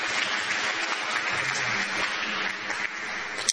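A crowd applauds steadily, a dense wash of many hands clapping at once that holds an even loudness throughout before cutting off abruptly.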